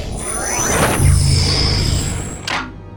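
A sci-fi reception door, opened by pressing a door button, slides open with a loud airy whoosh and sweeping hiss over a low mechanical hum, finishing with a short sharp puff of air about two and a half seconds in.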